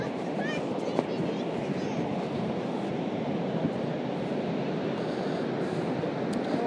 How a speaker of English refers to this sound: The sound of the Atlantic Ocean. Recording on my iPhone 6, held within inside my jumper.